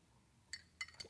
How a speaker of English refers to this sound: Sip of my espresso.